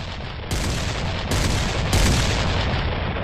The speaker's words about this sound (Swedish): Och under en kvart runt klockan 3 på dagen så pågick det då en häftig skottväxling mellan Cumberland och Virginia.